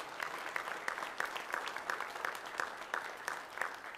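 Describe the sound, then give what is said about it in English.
An audience claps together in praise of God, a steady, dense burst of applause, many hands striking continuously at a moderate level with no voices standing out. “If you believe God can do it, would you give him a hand clap of praise in this house?”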